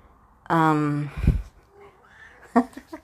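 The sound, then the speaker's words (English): A pet cat lets out one drawn-out meow, followed by a soft low thump and a couple of brief, faint voice-like sounds. “My cat always wants to say hi.”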